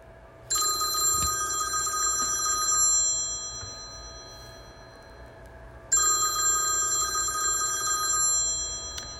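A telephone rings twice in long bursts, a bright trilling electronic bell with a steady high pitch, separated by a few seconds of quiet hum. No one speaks.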